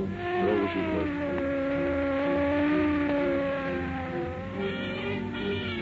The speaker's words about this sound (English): While traffic at one of Los Angeles' busiest intersections is jammed with a morbidly curious mob, car 11 screams through downtown streets.